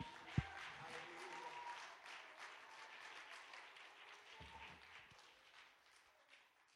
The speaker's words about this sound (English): And someone say in Jesus' name, if you believe God's going to do a mighty work, would you clap your hands to the Lord with faith?